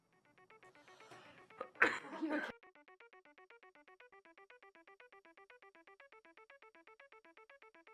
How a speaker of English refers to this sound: excuse me. So anyway, now I'm going to cough.